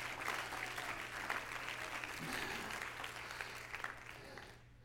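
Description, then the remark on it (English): An audience claps their hands to the Lord in a sustained, dense wash of applause at steady volume, then quickly fades out at the end, with a low hum underneath. “Everybody clap your hands to the Lord today.”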